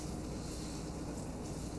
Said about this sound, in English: We're starting to get a sizzle.